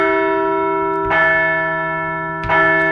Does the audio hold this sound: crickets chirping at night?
no